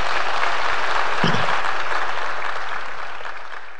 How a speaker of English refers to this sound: And so give Winnie Mandela a big round of applause.